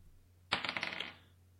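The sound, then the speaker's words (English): Dice rolled for an insight check clatter onto a hard tabletop, a sharp first impact followed by a quick run of rattling bounces that settle within about half a second, fairly loud with no voices. “Roll me an insight check.”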